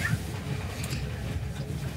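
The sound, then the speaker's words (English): A steady rumble of a passenger train running along railway tracks past a canyon, a continuous low roar with faint rattling and no talking, holding at an even loudness throughout. “That canyon, that's still on the other side of the train, actually.”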